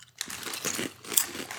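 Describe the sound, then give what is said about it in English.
Someone bites into a crunchy sea salt kettle chip, with a run of sharp, crackly crunches as they chew, loud and dry with no talking. “That is a very crunchy kettle.”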